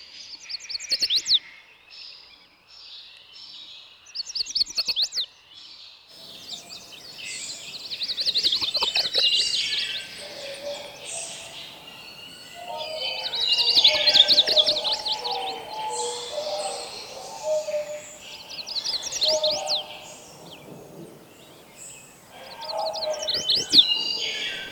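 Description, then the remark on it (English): Bright, high-pitched chestnut-sided warbler songs repeat in quick phrases, with several clear singing bouts over a soft background of other bird calls; the songs sound fairly loud. “A chestnut-sided warbler often sings Wish, Wish to See Miss Beecher, but he also has other songs.”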